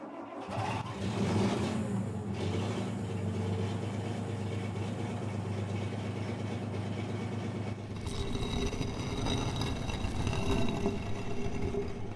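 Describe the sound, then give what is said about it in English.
A heavy engine drones and strains steadily as it hoists a stone slab of about 70 tons in the desert at sunset, its low rumble shifting to a harsher, busier pitch partway through as it labors under load. No voices. “Glad we got the engine. That slab weighs about 70 tons.”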